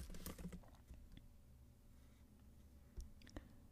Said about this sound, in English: I have my trusty laptop, so pardon me if you hear my typing.